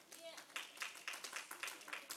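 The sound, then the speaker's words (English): A faint, brief round of applause from an audience giving themselves a hand for speaking Greek during a Bible teaching: sharp claps arriving in a quick, fairly steady rhythm, with a low murmur of voices underneath. “Give yourself a round of applause tonight.”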